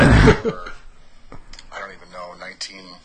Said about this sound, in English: Look at that. first episode is you coughing.